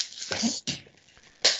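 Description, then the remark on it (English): Paper being crumpled: three short bursts of dry, crinkly crackling with a bright, hissy texture, the middle one softer and trailing off before a sharp final crunch. No one speaks. “just giving us a wonderful sound of crumpling paper there.”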